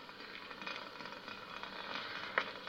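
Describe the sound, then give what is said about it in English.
A kettle boiling with a steady rushing hiss and soft bubbling crackle, fairly quiet and continuous, with one brief sharper pop near the end. “Kettle's boiling.”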